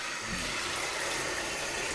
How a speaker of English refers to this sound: I'm going to turn off the faucet here for a second. All right, now pouring in some bubble bath. Now let me just turn the faucet back on here.